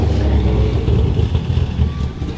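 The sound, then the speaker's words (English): A loud, throaty rally car engine roars, its low rumble surging and revving steadily as the car powers around a corner chasing another car. “Well, it's a different car, but go on.”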